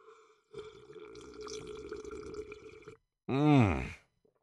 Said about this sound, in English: You know, let me fucking sip on this water while you ask yourself that question. Let me fucking see if this water wants to be successful.